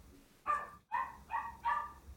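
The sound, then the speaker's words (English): A puppy barks four times in a quick, uneven series, short high-pitched yaps with brief gaps between them, over a faint low background hum. “Oh, I'm sorry, if you hear my little puppy bark.”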